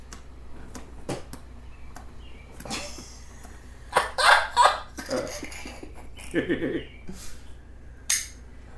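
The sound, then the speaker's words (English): Chickens cluck in short, irregular bursts, a few louder squawky calls bunched in the middle, with sharp clicks and scratchy noises scattered between them. “We gotta get some better birds around here, dude. I can't work with these birds anymore.”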